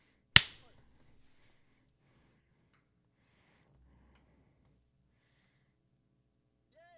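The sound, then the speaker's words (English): A single sharp, loud clap, as if a group of people clapped at exactly the same moment, followed by several seconds of near silence with only faint background murmur. “Claps, claps, claps. Everyone needs to clap.”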